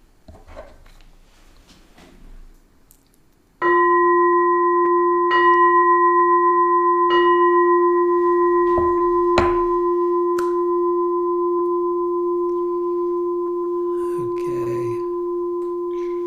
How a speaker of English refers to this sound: Okay, everybody, I'll ring a bell to end the evening formally.